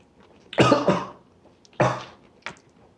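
A person coughs several times up close: a double cough burst, a pause, then another hard cough and a smaller final one, with no speech.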